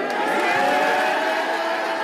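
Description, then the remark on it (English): A team celebrates in a locker room, pouring drinks over one another, many voices screaming and shouting at once in a loud, dense, overlapping roar that holds steady without a break. “The screaming, they're pouring drinks all over them, they're freaking out, they're losing their mind.”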